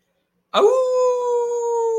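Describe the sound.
After a short silence, a person lets out a loud imitation of a wolf howl for the He-Wolf, Khalil Shakir, and his touchdown in the Steelers wild card game: a single rising cry that settles into a long, steady, held note.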